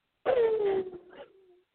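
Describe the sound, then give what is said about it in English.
A person imitates an elephant with one loud, sustained trumpeting cry that starts high, slides gradually lower in pitch, then trails off after more than a second. “Well, I know when you were talking about the elephant in the room, I also do an elephant as well. So it's a little bit like this.”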